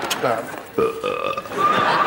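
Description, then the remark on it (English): A loud, drawn-out belch lasting around two seconds, with a croaky voiced tone that wavers and rises toward the end. “Belch Wang for …, which means double number points”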